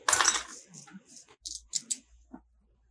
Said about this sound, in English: All right, roll your shooting dice. I'm going to spend a penny on that, a 3 and a 1.